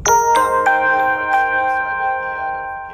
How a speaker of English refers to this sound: Got again, folks, to turn off my notifications, and there it is. So no more notifications for you guys today.